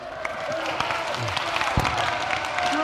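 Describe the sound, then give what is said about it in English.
An audience at a camp breaks into steady applause, a dense patter of many hands clapping at moderate volume, with a few scattered voices and cheers mixed into the crowd noise. “Give that man a round of applause.”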